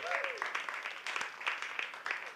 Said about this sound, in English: Y'all need to clap for that.